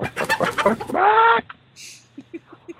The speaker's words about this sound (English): I have chicken sounds somewhere. I'll make sure they get put in here. You can record the chicken sound live. What are you talking about? I did that. That's what I did. I took the computer out to the chicken coop.